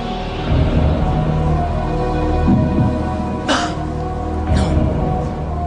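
A sharp, muffled cough that seems to hide a spoken word bursts out over a steady humming background, followed about a second later by a fainter second cough-like sound.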